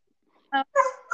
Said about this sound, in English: Oh, and Bobo's barking.